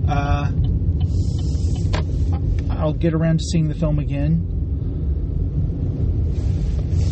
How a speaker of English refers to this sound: It's another recording in the car